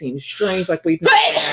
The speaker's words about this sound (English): Bless you. Thank you. Sorry, I'm sick. Anyway, I gotta gross him out. I sneezed a glob. Sorry.